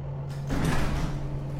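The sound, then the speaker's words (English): A large bay door slowly rises open, grinding with a steady low hum and a broad rumbling scrape, sustained throughout, with no voices. “3 minutes later, the bay door slowly rose, revealing Yara by the control pad.”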